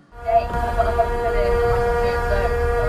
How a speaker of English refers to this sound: Yeah, that's a horn in the distance. Let's see how long this goes for. Crank it up. Just continuous. I think we wind up going a full 30 seconds with this clip, but I think the actual length on the horn was upwards of 50, 55 seconds.